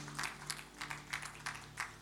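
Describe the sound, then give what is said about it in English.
A church audience claps together in a steady rhythm, about six bright, sharp bursts over two seconds, over a low steady hum, with no one speaking. “Yeah, you can clap, church.”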